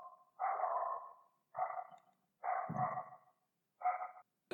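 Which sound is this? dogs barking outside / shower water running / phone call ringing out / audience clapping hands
dogs barking outside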